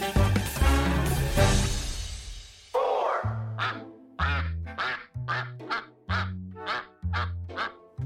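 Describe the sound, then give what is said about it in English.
Around 500 Indian runner ducks at a vineyard in Stellenbosch, South Africa, quacking loudly and repeatedly, starting in a dense overlapping chorus, then settling into a steady rhythm of distinct, nasal quacks about once per second, with no talking. “The army of around 500 Indian runner ducks have a taste for snails, making them valuable employees”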